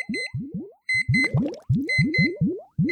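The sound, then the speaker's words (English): An alarm clock goes off with a loud electronic pattern: rapid, repeating rising bloops layered over steady high-pitched beeping tones, with no one talking. “Usually, I jump right out of bed when my alarm clam goes off.”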